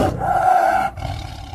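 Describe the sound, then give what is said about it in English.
A tiger lets out a loud, rough roar, a sustained throaty bellow lasting most of a second before tapering off into a lower rumble. “Tigers are absolutely fucking bomb. They sound cool. Very scary.”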